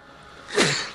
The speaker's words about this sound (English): Yeah, that was me sneezing.